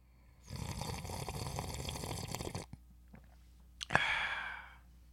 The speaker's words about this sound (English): And join me in this sip of cafecito. Here's a Monday sip.